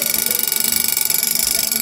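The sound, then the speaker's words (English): A mechanical alarm clock rings continuously, its bell hammering in a fast, steady rattle that is loud and bright from start to finish, with no voices. “They did have alarm clocks.”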